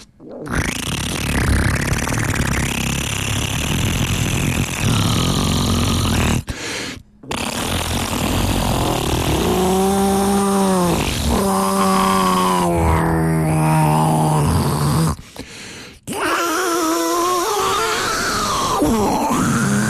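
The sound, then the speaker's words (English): A performer plays a mono cheek squeak solo on his cheek synthesizer on the Nardwuar the Human Serviette radio show: squeaky, rubbery mouth and cheek noises, with bursts of pitched, wobbling squeals sliding up and down, interrupted by short pauses. Loud and continuous, no words spoken. “I'll have the show tonight at 1067 East, and I will do a solo for the cheek synthesizer.”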